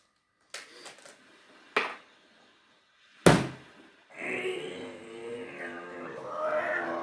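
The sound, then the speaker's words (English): A body thrown down a hatch tumbles down a metal ladder in three separate heavy clanging impacts, the last the loudest bang, followed by a sustained droning, tonal sound. “Because to throw down the hatch, you forgot there's a ladder. So you went, cling, cling, cling, cling, bang. Right on the metal.”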